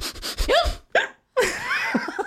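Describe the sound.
A voice imitates a woman's uncontrollable hiccups: a burst of sharp, squeaky vocal hics with rising-falling pitch, a brief pause, then another rapid run of hiccup-like yelps, fairly loud.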